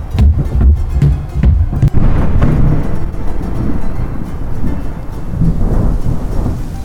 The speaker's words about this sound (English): Rain begins to pour down on top of the city streets.